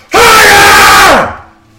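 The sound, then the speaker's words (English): A single loud, sustained scream from a voice imitating a high, shrill 5-year-old girl, held for about a second before trailing off with a falling pitch at the end. “As she screams in a voice that I can't do. That was already very loud, but like in the high, shrill, like 5-year-old mm-hmm.”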